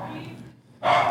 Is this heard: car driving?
no